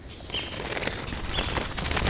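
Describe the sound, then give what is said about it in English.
Darwin's finches, small sparrow-like birds, flutter and flap their wings in the Galapagos Islands, with a couple of brief, high chirps over a steady rustling background; no one speaks. “Giant tortoises, marine iguanas, and those little sparrow-like birds known as Darwin's finches.”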